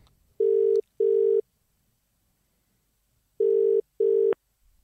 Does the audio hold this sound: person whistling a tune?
no